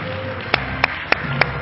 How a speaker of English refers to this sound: It's good to be in the house of the Lord today. If you're glad to be in the house of the Lord, why don't you clap your hands and shout unto God with the voice of triumph today.